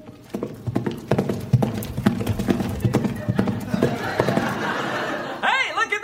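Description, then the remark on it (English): Horse hooves clip-clop in a quick, steady rhythm for several seconds, clear, before a horse lets out a short whinny at the very end. “That horse just talked!”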